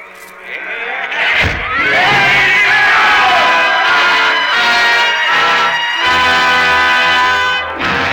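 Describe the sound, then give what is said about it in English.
A loud, sustained roar from a large crowd, many voices shouting and yelling together at once, swelling quickly and staying dense throughout, with a brief sharp thud early on. “Sidney Carton has found his destiny, and the roar of the crowd fades into the silence of 150 years ago.”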